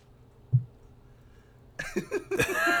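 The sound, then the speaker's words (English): After a quiet stretch with one low thump, a loud run of harsh, throaty coughs erupts in quick succession, several rough bursts crowding together near the end. “Quit coughing over there!”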